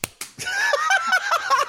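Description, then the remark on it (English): A few sharp, slapping hand claps land in quick succession, followed by a loud, high, squeaky warbling sound that wavers up and down until the end. “That was kind of an awkward clap.”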